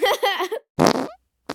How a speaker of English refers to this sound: Everybody launches air biscuits.